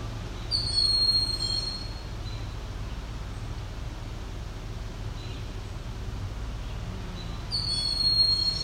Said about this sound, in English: My guess is this is a young bird who needs feeding. And who just doesn't know what to do other than to scream for food. So the parent must be around somewhere.